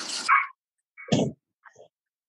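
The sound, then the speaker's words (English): Dogs play fighting outdoors give a loud rough burst, a second gruff outburst a moment later, then a faint short whimpering yip, with no talking. “The dogs are play fighting.”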